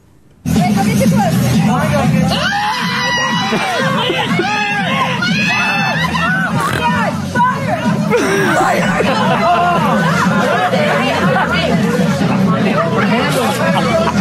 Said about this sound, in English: I've got a little bit of audio here for you. You kind of hear everybody like screaming and stuff.